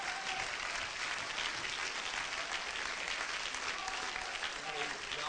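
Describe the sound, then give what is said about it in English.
A church audience claps their hands to the Lord steadily for several seconds, a dense, sustained wash of applause with no pause, a few faint voices mixed in beneath it. “Let's begin to clap our hands to the Lord, shall we?”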